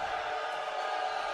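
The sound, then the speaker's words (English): The Islanders home crowd at a basketball game against the Bellevue Wolverines cheers loudly in a dense, steady roar of many voices that holds at an even level throughout the short stretch, with no single voice standing out, at the end of the first quarter. “Islanders loud crowd wins it this time.”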